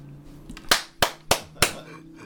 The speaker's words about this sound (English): Now, another big clap for me.